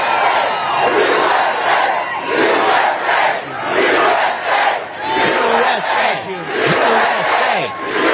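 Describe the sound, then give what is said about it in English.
A large rally crowd in Robstown, near Corpus Christi, on a windy day cheers and shouts loudly and continuously, with rising whoops and overlapping voices surging in waves throughout. “What a nice crowd.”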